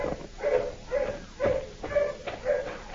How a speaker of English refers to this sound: Dogs are getting closer, Rocky.